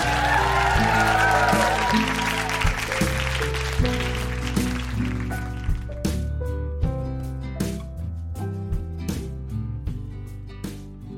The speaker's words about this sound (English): A round of applause for teachers, Montreal.